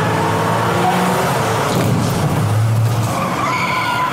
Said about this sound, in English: Wait, what was that? I just got outside and something just happened. There's a bunch of cars stopping, people getting out from the crowd.